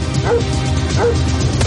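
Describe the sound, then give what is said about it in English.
A dog barks sharply two or three times at a steady pace over a constant dense rumble of background noise. “Shut my dog, you son of a bitch!”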